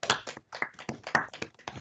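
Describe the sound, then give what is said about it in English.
A brief round of applause from a small group for Ross County, with quick, irregular hand claps, fairly loud for a couple of seconds and no talking. “Can we have a round of applause for Ross County?”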